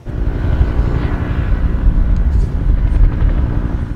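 helicopter flying overhead

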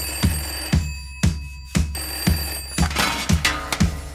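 telephone bell ringing

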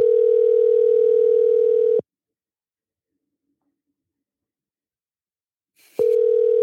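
phone call ringing tone

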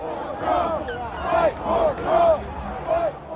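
crowd shouting

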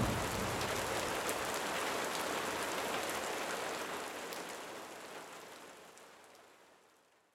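rain falling on surfaces

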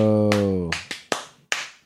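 hand clapping

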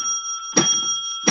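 bell ringing

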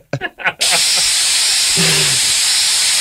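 spray bottle spraying

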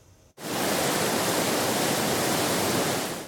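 rushing floodwater

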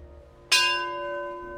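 memorial bell ringing

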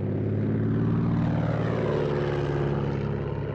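airplane flying overhead

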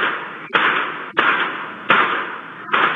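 gunshots

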